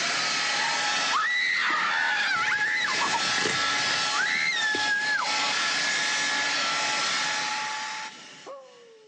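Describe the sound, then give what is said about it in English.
A power drill whirs steadily, its motor whine rising to a higher pitch in several bursts of a second or so before settling back, then winding down near the end. “A drill.”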